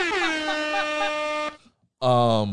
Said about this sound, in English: So shout out to him. Go ahead and hit him with the air horns.